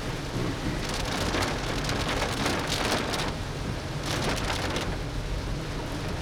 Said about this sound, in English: This is horrible rain.